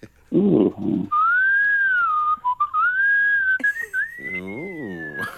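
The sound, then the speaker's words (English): A loud human wolf whistle by a grandmaster world whistling champion: a long, bright tone sliding up and down in pitch for several seconds, preceded by a short vocal sound and joined near the end by a swooping voiced glide. “It's a family show, but is there a whistle for kind of if you're feeling a bit frisky”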